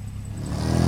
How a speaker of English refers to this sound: stepped on the gas, making two riders leap from the truck's path.